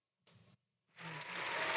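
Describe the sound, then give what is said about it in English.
A short burst of clapping cuts off abruptly, then applause swells back in and builds steadily louder, a dense crackling wash of many hands with no voices. “The applause has been going tonight.”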